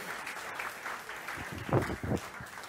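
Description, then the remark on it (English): A crowd applauds with steady, dense clapping that swells slightly toward the middle, a continuous wash of hand claps with no distinct individual beats. “Could we give these guys just a great round of applause?”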